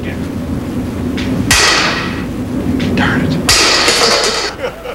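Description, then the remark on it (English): Two loud, sharp hammer blows on a tough plastic object, struck to try to break it, about two seconds apart, each ringing briefly, with a low murmur of people in the background. “Somebody got a bigger hammer?”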